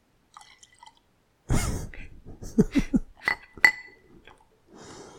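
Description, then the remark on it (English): Beer poured into a glass: a few light clinks, then a gush of liquid with several gurgling glugs and a sharp glassy tap, ending in a soft fizzing hiss. “can't even pour it close to the mic to hear it.”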